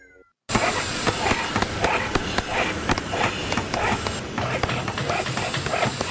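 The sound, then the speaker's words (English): After a short silent moment, a dog, Phoenix, makes repeated vocal sounds amid a loud, dense, noisy background that continues steadily to the end, with frequent sharp bursts. “Is that dog Phoenix?”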